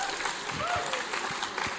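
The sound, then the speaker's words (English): A church audience claps steadily for a speaker, a dense rustle of many hands at an even loudness, with a few faint whistle-like tones and murmurs mixed in. “Let's applaud him again because he's so awesome.”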